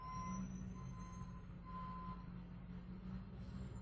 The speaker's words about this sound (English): Not sure if y'all can hear that in the background, but in true New York fashion, the sanitation truck is outside taking care of business.